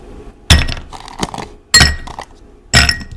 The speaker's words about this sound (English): Who is that? Ice. Yes, that is Ice Cubes.